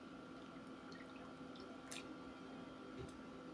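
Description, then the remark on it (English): A quiet sip of water over a steady low hum: a couple of small, wet, clicky swallowing sounds, with no talking. “Forgive me, got a drink of water.”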